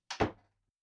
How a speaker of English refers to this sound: Shut my door, please. Thank you.